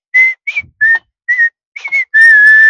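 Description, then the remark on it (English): A father whistles a spy-movie theme, a few clipped, punchy notes with brief gaps, then one long sustained note to finish. It's loud and clear with no talking. “You can't have the music ready for me to whistle it?”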